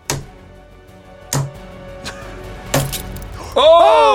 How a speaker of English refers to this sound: Wow. It's done. The mini mirror is smashed to bits. That one properly exploded. Okay. The mirror is completely broken.